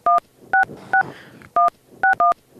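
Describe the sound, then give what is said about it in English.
Six loud telephone keypad tones beep in quick, uneven succession as a number is dialed, each a short dual-pitched blip, with a faint murmur of background noise between them. “We gotta call someone.”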